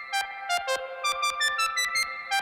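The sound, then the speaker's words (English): A run of about nine bright, bell-like synth notes in uneven rhythm, each with a sharp attack, smeared by a small built-in spring reverb unit with two springs in a case, whose metallic tails blur into a sustained, ringing wash. “Inside the box, there is literally a case with two springs in it, and the sound goes in at one spring and is picked up the other spring, and that produces this lovely, rough-sounding reverb.”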